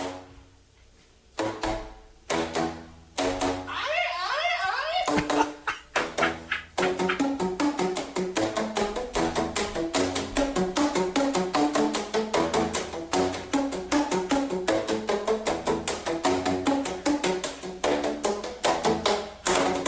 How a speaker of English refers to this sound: a song that you will recognize using just the wrapping paper rolls. All right, and using them as a percussion instrument